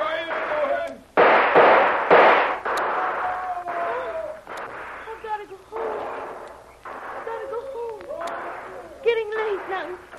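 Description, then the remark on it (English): Loud gunfire shots crack out in an irregular volley, several sharp bursts in quick succession, while voices speak and shout underneath; the shooters are firing wildly to cover their advance. “Now they're shooting wild. Trying to cover their advance.”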